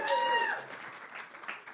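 Adults cheering, opening with a loud high whoop that slides down in pitch, then a steady wash of clapping and shouts for the rest of the short burst.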